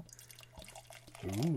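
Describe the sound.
Liquid splashes and trickles as a bottled Talisman red ale is poured into a glass, with a bubbly fizz throughout; a voice breaks in near the end with a drawn-out, pleased vocal sound.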